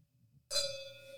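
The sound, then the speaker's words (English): Wine glasses, freshly poured with a 2019 California wine of 12.5% alcohol, clink together once in a toast, a bright sharp strike followed by a clear, high ringing tone that lingers and slowly fades. “All right, pour some glasses. Cheers.”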